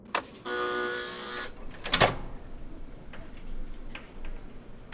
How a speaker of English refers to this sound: Okay, he's expecting you. I'll buzz you into the hallway. You go right through that door to the end of the hall.